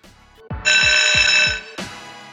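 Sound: buzzer sounding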